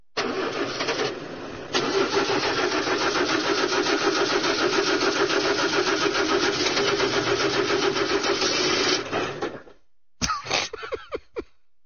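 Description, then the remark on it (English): A car engine cranks and catches, then runs at a steady, loud idle for several seconds before cutting off, followed by a few brief clunks and rattles. “You've been sitting here for a week with that engine idling, Snake Man.”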